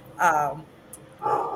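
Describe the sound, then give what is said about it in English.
Dogs bark in two short, fairly loud bursts: a sharp, tonal bark followed after a brief pause by another that runs to the end, with faint background noise between. “So hold on, I'm gonna turn the mic over in a second so I can yell at somebody to get the dogs.”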